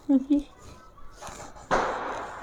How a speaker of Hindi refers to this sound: एक और पटाखा लाइक पटाखे फूटते जा रहे हैं.